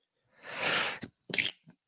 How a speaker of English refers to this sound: I had to sneeze. I have an allergic reaction right now.